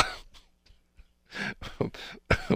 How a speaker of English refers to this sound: I'm sorry. I was coughing.